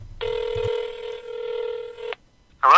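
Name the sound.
telephone dialing tones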